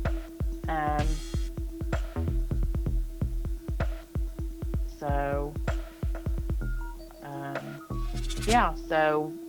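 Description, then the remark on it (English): Irregular keyboard typing clicks away in the background throughout as a person works from home, with a person talking over it and a steady low hum underneath. “I'm working as we're speaking right now from home. Hence the typing in the background.”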